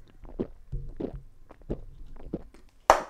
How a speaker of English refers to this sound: I'm going to chug this beer right now. Oh, same. Clink. Clinky clink.